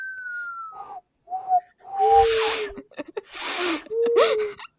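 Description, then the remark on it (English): A person whistles with their tongue to imitate an owl: a gliding opening note, then several short, wavering mid-pitched hoots broken up by loud, breathy bursts of air. “I can whistle with my tongue. That's what the owl sound is.”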